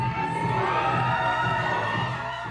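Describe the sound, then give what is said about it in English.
A large crowd at a drag event at Tennessee Tech roars with cheering, laughter and excited high-pitched shrieks, a dense, steady wash of voices that stays loud for the whole moment without any single speaker standing out. “The crowd here at Tennessee Tech is filled with laughs and shrieks of delight.”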